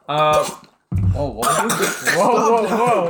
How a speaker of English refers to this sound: Whoa. Man choked on water. Bless you.